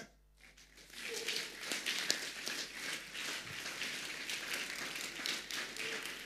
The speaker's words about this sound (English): Those who are clapping, I see God blessing them. I see God blessing them.